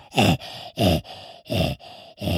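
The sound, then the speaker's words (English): A person imitates a leopard's rasping sawing call in dead-quiet surroundings: four loud, harsh, grunting rasps in a steady in-and-out rhythm, each a rough breathy burst with short pauses between, likened to a coughing noise or an old rip saw. “I thought, I make a noise of a leopard because it's dead quiet.”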